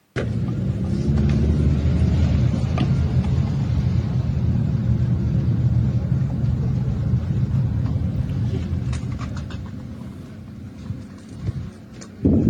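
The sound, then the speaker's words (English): Steady low rumble of road traffic at a traffic checkpoint in Oxford, Britain, vehicle engines idling and moving slowly, with the droning noise holding throughout and easing slightly near the end. No one speaks. “Here's a video from Oxford this week showing what looks like vigilantes manning a traffic checkpoint.”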